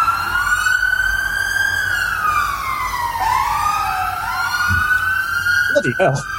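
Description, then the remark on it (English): An emergency vehicle siren wails steadily in London, its pitch gliding up and down in long sweeps while traffic rumbles underneath, as it passes; at the end a few brief voice fragments break through. “We'll just wait for that to pass. I live in London.”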